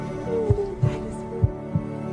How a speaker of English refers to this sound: they've also put the creepiest heartbeat underneath.